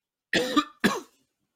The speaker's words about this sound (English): going out with a cough there.